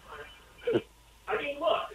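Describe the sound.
A thin, muffled voice comes through a phone line in two short bursts: a caller's radio echoing the broadcast back with a slight delay, fairly faint.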